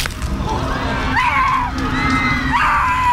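Two drawn-out, high-pitched screams rise and fall one after the other, set back in a steady, noisy crowd-like din with no clear talk.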